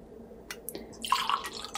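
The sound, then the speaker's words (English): Luxusova vodka is poured into a small measure, about 1.5 ounces, beginning with a few brief drips and clinks, then a short gurgling trickle with no talking. “So we'll go 1 ounce of this Luxusova.”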